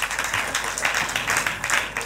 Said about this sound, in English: Now let's go into the spiritual. Clap your hands for God.